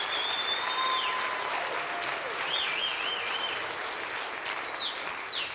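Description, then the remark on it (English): An audience at a staged sermon claps steadily in a dense, sustained wash of applause, with a few high whistles and faint cheers rising over it, staying loud throughout without anyone speaking. “Clap your hands, because that's a good little analogy right there.”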